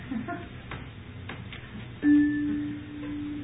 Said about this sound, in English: And let's demonstrate a bigger hand chime,